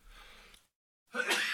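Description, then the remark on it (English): A single sharp sneeze bursts out after a soft breathy rustle and a brief moment of silence. “Bless you. Pardon me.”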